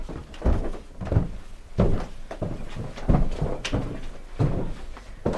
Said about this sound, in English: There's a door, a cream door. I'm just walking through.